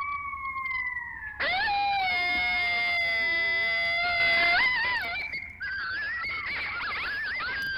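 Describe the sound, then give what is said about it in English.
A pack of coyotes howls and yips together, several high wavering voices overlapping in a loud, continuous chorus that starts with a single long howl and grows frantic and warbling. “These are some crazy ass coyotes.”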